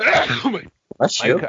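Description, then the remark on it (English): Two loud allergy sneezes, one right after another, each a harsh voiced burst, with only a brief silent pause and a tiny intake of breath between them. “I would have muted, but I was speaking. My goodness, the allergy.”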